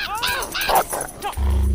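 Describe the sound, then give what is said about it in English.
A female dog that has grabbed a bird in its mouth gives a few short, high barks and yips, mixed in with a person talking over it, and then a low, steady hum comes in at the end. “Oh, no. Bad dog. No. Get him out of your mouth.”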